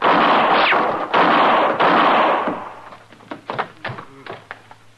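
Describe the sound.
Three loud, sharp gunshots crack out about a second apart during an armed confrontation with a marshal, each one's ringing decay trailing into the next, then a voice starts speaking as the echoes die down.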